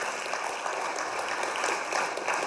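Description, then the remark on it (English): Steady, dense applause from a crowd for the organization Friends of Refugees in Clarkson, a continuous crackle of many hands clapping at an even level throughout with no voices standing out. “And while you're clapping, I'd love for you to keep clapping for another organization as they make their way.”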